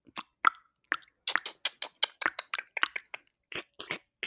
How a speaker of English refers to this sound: That's slurping.